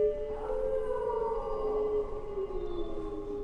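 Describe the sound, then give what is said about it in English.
Several wolves howl together in the distance, long wavering tones gliding and overlapping in a steady, eerie chorus with no one speaking. “You ever seen what a pack of wolves can do to livestock?”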